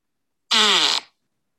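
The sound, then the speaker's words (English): A single loud, buzzy fart lasting about half a second, isolated against silence, with a wavering tone and a quick fade at the end. “Well, give me a fart.”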